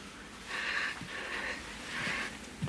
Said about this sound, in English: Kind of let the panting play out.